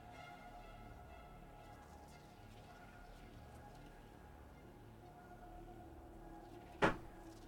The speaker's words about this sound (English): And the door opens, and your hideout is in front of you.